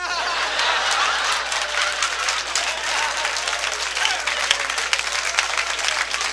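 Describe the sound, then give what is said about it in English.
A comedy-show crowd breaks into sustained applause after a joke, a dense wash of many hands clapping at steady loudness for several seconds, with faint laughter mixed in and no one speaking. “What a crowd tonight.”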